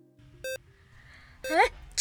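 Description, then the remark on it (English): A brief electronic beep sounds in a quiet operating room during surgery to remove a metal spike from a patient, then a nurse lets out a loud, sudden sneeze: a drawn-in voiced breath followed by a sharp, noisy burst. “A nurse's loud sneeze”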